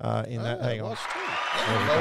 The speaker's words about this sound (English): I cut the applause. Yeah, that was there. A little shorter.